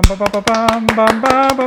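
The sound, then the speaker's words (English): A few hands clap in a quick, uneven patter, fairly loud, over a sustained voiced tone, like someone holding a cheer or hum throughout. “I wish I had a soundboard to have more people clapping.”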